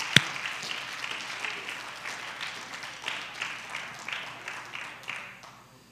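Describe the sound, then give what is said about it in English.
A crowd claps their hands to the Lord in a loud, steady burst of applause during a morning sermon, many overlapping claps forming a dense rhythmic patter that fades out near the end after a sharp click at the start. “Oh, come on, somebody clap your hands to the Lord this morning.”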